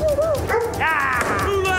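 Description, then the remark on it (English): A dog barks and yelps in a series of high, whiny, drawn-out cries, loud, with a murmur of background noise underneath. “Come here, dog.”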